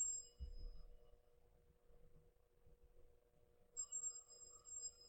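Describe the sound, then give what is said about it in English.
A telephone rings in two bursts of bright, steady electronic tones separated by a few seconds of quiet. The ringing is fairly soft and there is no talking. “I just got a phone call, and it wasn't an emergency.”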